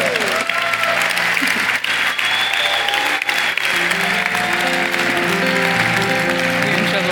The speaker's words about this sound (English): But I want you to give them a round of applause as they come in. Ladies, here they come.